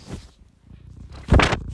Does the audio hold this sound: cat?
yes